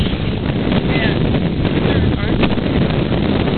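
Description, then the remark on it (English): Constant wind buffets the microphone over a low, steady rumble of a boat moving across the open water of Silver Lake, with faint muffled voices in the background. “And we're in the boat. Silver Lake.”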